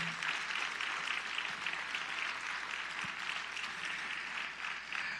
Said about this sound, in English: If you did something, come on, let's give yourselves as well as others a round of applause.